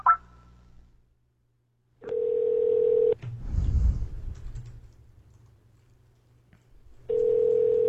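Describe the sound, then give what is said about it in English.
A short electronic beep opens, then a steady telephone ringing tone sounds for about a second, pauses through some low clattering noise, and rings again, as a Skype call is placed to a phone number. Fairly loud, with no voices. “Like literally, like call a physical number with Skype.”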